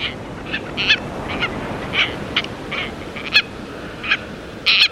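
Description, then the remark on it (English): Tropicbird calls ring out as a series of harsh, repeated squawks, some doubled, over a steady background rush like wind or surf, no voices present; the tropicbird is a white seabird with a red bill and long tail streamers. “sparkling white seabird with a red spear of a bill and luxuriantly long tail streamers”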